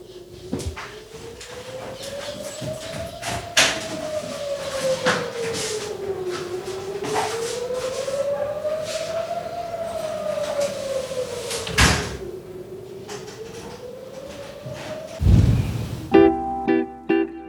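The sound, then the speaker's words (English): A wailing air raid siren slowly rises and falls in pitch over and over, steady, with a few sharp bangs like a door slamming breaking through near the end. “So we just had an air raid siren”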